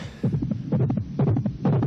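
A pounding heartbeat sound effect in an anti-crack message: four heavy, low thumps in a steady rhythm, each roughly half a second apart, loud and unaccompanied by speech.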